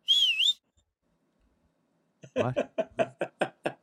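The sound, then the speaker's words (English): A person gives a short, bright whistle with a quick wavering up-and-down pitch, lasting about half a second, followed by silence and then someone talking. “I gave you a little whistle.”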